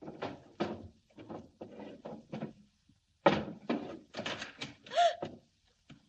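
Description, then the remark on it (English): Desk drawers in an office are pulled open and pushed shut again and again, a quick irregular series of wooden scrapes and clunks with a brief pause midway, no voices. “I stood there, opening and shutting drawers.”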